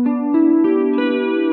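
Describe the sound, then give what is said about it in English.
An electric guitar with a shimmering chorus and reverb plays four sustained, ringing notes in steady succession, each blending smoothly into the next, with no voices. “So there's that chorus effect with reverb.”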